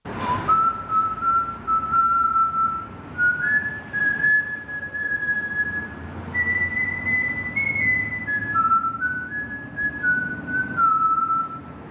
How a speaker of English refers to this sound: He shot a guy, and then he had these words, and he rolled up and whistled, and it was rather ominous.